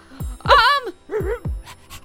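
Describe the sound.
A person imitates a dog panting: a quick series of rhythmic, voiced huffs, some with a whiny rising-and-falling tone, ending in a few softer breathy puffs.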